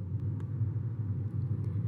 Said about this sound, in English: Do the sounds of cars relax you? I know that sometimes sound of the highway or cars relaxes people. I've heard that mainly from people who have grown up in cities, that it's a comforting noise.